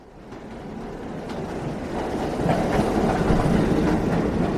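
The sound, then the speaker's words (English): A New York City subway train rumbles along the tracks with a steady, dense roar that builds slightly louder, a continuous rattling clatter with no voices. “5.5 million people used to use the subway each day until the coronavirus took hold of the Big Apple.”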